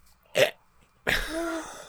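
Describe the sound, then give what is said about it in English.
Two close hiccups in quick succession: a short, sharp gulp, then a longer, voiced hic with a slight tonal squeak, seemingly made by a voice imitating hiccups. “We all have the hiccups.”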